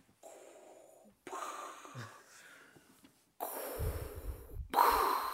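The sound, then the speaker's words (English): A person imitates heavy respirator breathing: slow, hissing inhales and exhales alternate about four times, growing louder and raspier toward the end, with no speech. “That's a little better. It's my breathing.”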